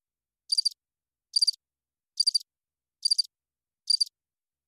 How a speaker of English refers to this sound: Do you hear those crickets? Me too.